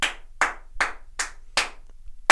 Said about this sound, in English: Out of five slaps, what are we giving the so five? Five being the best? Five being the best? That's a no-brainer for me, dude. All right. Slap it out. Give me the slaps.